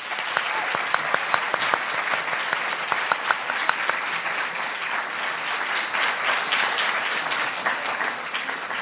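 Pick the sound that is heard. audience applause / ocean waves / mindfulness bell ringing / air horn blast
audience applause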